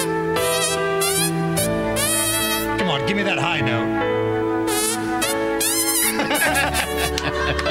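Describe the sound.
Hand farting noises play a Christmas tune as a series of buzzy, reedy sustained notes that step up and down in pitch, loud throughout, with a man talking over part of it.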